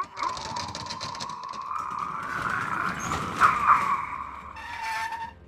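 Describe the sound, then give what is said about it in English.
A heavy door is forced open with a long, loud grinding screech of metal scraping, straining steadily for several seconds before a final harsher scrape. “Help me with this door, Mr.”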